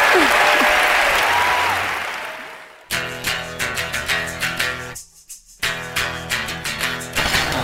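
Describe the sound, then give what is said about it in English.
An audience applauds loudly for Terry Gross in a dense, steady wash of clapping for about three seconds. Then it cuts to rhythmic music with sharp beats and a brief pause midway. “And please, another round of applause for Terry Gross.”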